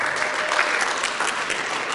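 A crowd claps steadily for a person who has just given a Bible reading, a dense, even patter of many hands at a fairly loud level with no voices standing out.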